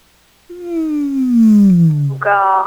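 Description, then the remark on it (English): A single drawn-out, low moaning voice slides slowly downward in pitch, a person imitating a whale call, then ends with a brief, higher strained wail. It is fairly loud, with no other sounds. “Yeah, go with what he just did. Have you ever seen Finding Nemo? A whale.”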